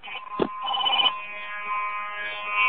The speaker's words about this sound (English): I got a telephone call coming in. Hold on.